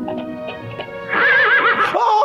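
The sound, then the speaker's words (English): A voice imitates a horse whinny: a low, rough buildup swells into a loud, wavering high-pitched neigh that warbles up and down, then drops into a steadier tone, fairly loud. “He's not even a horse.”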